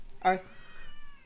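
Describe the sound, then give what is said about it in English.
A single meow from a black cat, clear, starting with a sharp loud onset and trailing off into a drawn-out, fading wail. No one speaks over it. “Talk about the black knight, Ziggy. Her black cat.”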